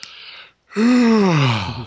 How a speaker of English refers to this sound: That's asterisk yawn asterisk.